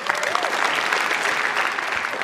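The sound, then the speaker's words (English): Steady audience applause for a question asker fills the whole stretch, a dense, even wash of many hands clapping at moderate loudness, with a faint voice briefly rising underneath near the start. “Not 100% sure he deserves applause, but sure.”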